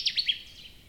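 A male Connecticut warbler sings a brief burst of three loud, bright, high chirpy notes in quick succession, heard clearly on its own with no voices.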